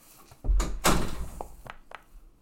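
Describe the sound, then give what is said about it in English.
A door opens with a heavy thump and a low rattle as someone's brother walks in, followed by a few softer clicks and knocks as it settles. No one speaks. “My brother walked in and see my cat sitting in a box.”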